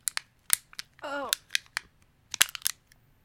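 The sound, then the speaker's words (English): The cut-off top half of a plastic water bottle, used to hold a beauty blender, being scrunched: a series of sharp, irregular crackles and snaps, with a short squeaky creak partway through, heard on its own without any talking. “So now I'm going to scrunch it.”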